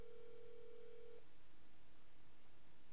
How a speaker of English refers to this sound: I should have thought that he wouldn't answer my phone call.